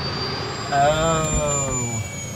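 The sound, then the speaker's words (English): A voice imitates a jet engine revving up for takeoff, giving one loud, sustained, whining roar of about a second over a steady high-pitched hum. “All right, everybody, prepare for takeoff. This is your captain speaking.”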